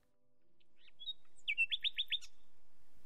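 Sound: nightingale song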